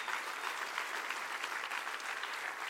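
An audience claps their hands in sustained, steady applause to rejoice over Jesus at an evening service, a dense wash of many overlapping claps holding at an even loudness throughout, with no voices standing out.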